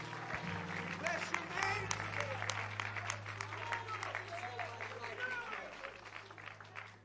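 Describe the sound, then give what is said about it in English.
A large church audience claps hands to the Lord in sustained, dense applause before being seated, with scattered voices and cheers mixed in and a low steady hum underneath. “Clap your hands one more time to the Lord before you're seated.”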